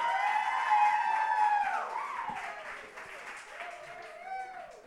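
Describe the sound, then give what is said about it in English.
An audience at a burlesque show claps steadily for a performer while voices cheer and whoop over it, with high sustained yells rising and falling in pitch. The clapping stays loud throughout and eases slightly toward the end. “You guys should give her another round of applause.”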